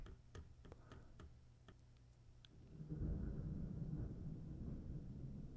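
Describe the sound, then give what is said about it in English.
A few sharp ticking clicks, then a deep, low rumble of thunder from a morning thunderstorm swells in and rolls on steadily to the end, muffled, with no voices. “I don't know if you could hear that or not, but that was a little thunder. A little morning thunderstorm.”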